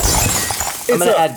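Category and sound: sound effect, glass breaking sound effect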